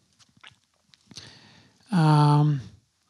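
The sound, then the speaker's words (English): A few soft clicks give way to a wet crunch of someone biting into a hot pickle with red peppers, followed by a loud, sustained vocal exclamation with a falling pitch. “Didn't want to wake up and listen to me chew today”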